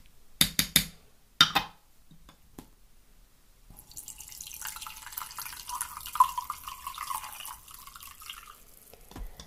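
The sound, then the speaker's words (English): A few sharp clinks of cup or teapot at the start, then a steady stream of green tea pouring into a cup, its splashing tone rising slightly as the cup fills. “Okay, this feels like quite a tricky one, so I think it's time for me to pour my green tea.”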